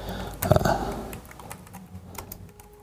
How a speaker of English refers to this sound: And this is just typing the address, click show me the comps, and just like that, you've got an instant readout of all the comps, everything that's sold.